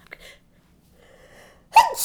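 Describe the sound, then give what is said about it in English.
A single sudden sneeze bursts out near the end, loud, after a quiet stretch with faint breathy murmurs and a soft inhale. “Bless you. Excuse me.”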